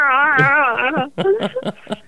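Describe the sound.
A person does a long, warbling vocal imitation of Chewbacca's roar from Star Wars, wavering in pitch for about a second, followed by a few short voiced bursts.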